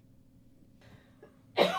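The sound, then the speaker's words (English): A woman coughs: a single harsh cough bursts out at the end, loud against the quiet, preceded by faint breathy throat noises. “Hey, she's coughing up some of that jism.”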